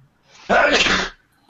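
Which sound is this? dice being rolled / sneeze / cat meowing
sneeze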